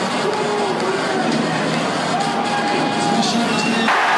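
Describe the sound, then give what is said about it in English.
A big stadium crowd at a Wales versus Australia rugby match roars and jeers after a try under Wales' posts that the referee does not send to the TMO, a sustained, dense wash of voices and whistles, holding steady at a loud level with a slight surge near the end. “Crowd certainly don't like it.”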